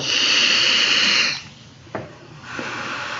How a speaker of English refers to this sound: Hear that, buddy? Yeah, just blowing the mic. No, I blew onto the phone.